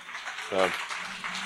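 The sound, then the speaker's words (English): Steady clapping from an audience at a Neuralink presentation, after the announcement of an FDA breakthrough device designation, fills the short stretch, a dense crackling wash at moderate volume, with a brief voice cutting through partway. “A round of applause there.”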